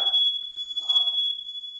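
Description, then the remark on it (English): A smoke alarm, set off after a candle caught something alight, blares a loud, piercing high-pitched tone that holds steady without a break, with brief muffled noises rising faintly underneath. “Sounds like your fire alarm.”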